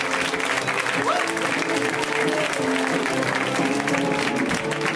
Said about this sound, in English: Let's welcome him home with an extra big round of applause.